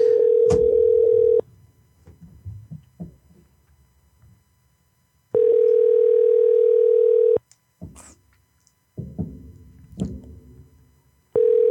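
A phone line ringing out on a second attempt to call a number, with no one picking up: long, steady, mid-pitched ringback tones, three full bursts and a fourth starting, separated by pauses filled with faint low line noise and clicks.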